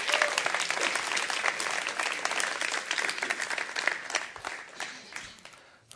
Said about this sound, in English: Why don't we give them a nice round of applause?